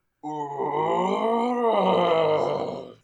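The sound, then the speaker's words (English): A person voices a long, sustained groaning howl, imitating a Sasquatch call: one loud, rough, harmonic cry that holds steady, dips slightly in pitch midway, then cuts off after about three seconds. “How bored are we as a society that there are people practicing their Sasquatch calls?”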